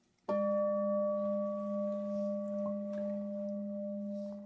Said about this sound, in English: I want the bell to ring, and then there's that sound.